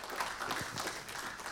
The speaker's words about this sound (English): Thanks, team. Was that good or what? You've done it again. So good. Yeah, give them a clap. That's brilliant.